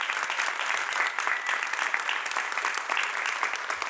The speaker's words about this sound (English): And let's give another round of applause for our 10 essayists.